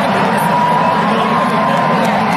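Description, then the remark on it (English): A large crowd roars and chatters continuously in a big echoing arena during a massive food fight, with people throwing their food at one another. A loud, dense wall of blended voices with no single speaker standing out. “This is the crowd getting into a massive food fight.”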